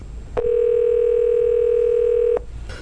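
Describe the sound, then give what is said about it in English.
A steady, loud telephone dial tone after a caller hangs up holds one mid-low pitch for about two seconds, starting and stopping abruptly, with no talking around it. “Why did you hang up on us, you motherfucker?”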